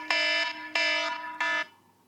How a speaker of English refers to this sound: Why didn't we use that buzzer during the game?